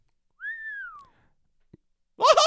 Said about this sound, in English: Chet Morton whistled.